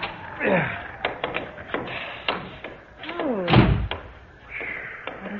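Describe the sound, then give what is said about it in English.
Several dull thumps and knocks land against a door in freezing cold weather at an irregular pace, then a heavier bang as it's shoved open, followed by creaking and a few lighter taps. “For heaven's sake, try the door.”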